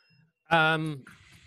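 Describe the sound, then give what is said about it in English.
A single sung or voiced bell ding, given in response to a rhyme: one loud, rich tone that holds for about half a second, sliding slightly downward in pitch before cutting off, followed by faint hiss. “You know, I don't usually feel like I have to give people a bell, but I feel like I have to, even though I got to be honest, I was not fond of that rhyme, but I will give you a bell.”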